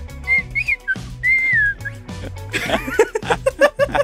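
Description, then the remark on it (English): A person whistles a short, wavering song melody for about two seconds, then dissolves into breathy chuckles and giggling while trying to keep whistling. “Can you whistle like an actual melody?”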